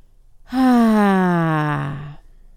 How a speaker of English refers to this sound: And just repeat in and out. In and out. Nice, deep breathing. There's something so calming about breathing in and breathing out, emptying your lungs all the way and repeating that process.